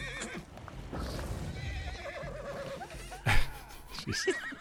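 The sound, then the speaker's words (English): Horses that are fighting neigh and whinny in agitated bursts, with a sharp loud squeal near the end, over a background of hoof thuds and general commotion. “Now there are horse fighting going on.”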